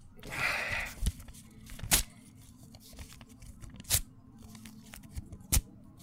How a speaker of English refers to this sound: Yeah, I have them right here in this sheet of paper. I'm going to slide over to you.